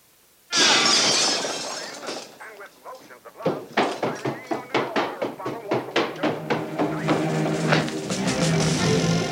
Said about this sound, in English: I don't know what happened. I was watering my plant and I broke your lamp.